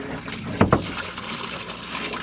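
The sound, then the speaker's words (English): Water runs steadily into buckets, each being filled about a third to halfway up, a constant rushing hiss with two quick, louder sloshing splashes early on; no one speaks. “It takes a little while because you've got to fill each bucket halfway up.”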